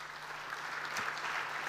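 An audience at a church service claps steadily as a man comes forward to share a testimony: a dense, even patter of many hands at moderate loudness, with one slightly sharper clap standing out midway and no voices over it.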